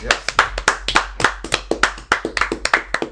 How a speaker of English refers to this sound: Clap it up.